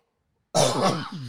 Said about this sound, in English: One day this cough will go away.